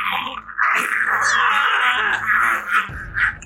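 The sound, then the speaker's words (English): A person vocally imitates a giant bug monster's scream, a sustained, raspy, strained shriek lasting a few seconds with wavering pitch and a couple of louder bursts near the end. “Since it's screaming in my face, I'm using my my fey gift in order to distract it.”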